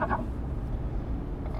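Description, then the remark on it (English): A frog's low, subdued croaking forms a continuous, poorly defined rumble with no clear separate calls, faint, with no voices present. “Kind of a subdued, not real well defined croaking.”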